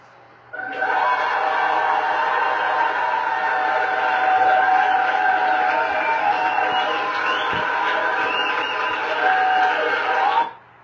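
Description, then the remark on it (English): A loud, steady roar of audience applause mixed with cheering voices swells in quickly, holds at an even level for about ten seconds, then cuts off abruptly. “That's quite the applause.”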